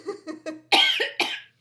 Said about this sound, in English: Sorry, I have to cough. Start again.